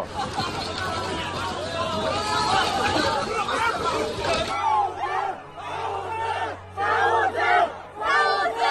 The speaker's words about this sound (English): Just 5 minutes ago, there were only a few people screaming. Now suddenly everyone's screaming. If this persists, bad things will happen.